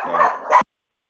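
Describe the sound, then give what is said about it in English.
Two quick, high-pitched yappy barks from small dogs, fairly loud, followed by abrupt silence. “was just killed by a herd of small dogs.”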